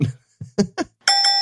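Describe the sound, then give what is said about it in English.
A few brief voice sounds, then a bright, ringing bell struck loudly twice in quick succession to mark the end of a segment, its metallic tone sustaining and shimmering to the end. “All right, well, that's the bell.”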